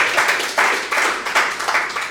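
A crowd applauds steadily, with dense overlapping claps swelling in several waves at a fairly loud, even level and no voices on top.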